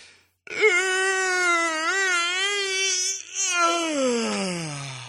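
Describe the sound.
An exaggerated, voiced yawn: one long, loud moaning tone held for several seconds with a slight wavering pitch, sliding downward at the end, with no talking.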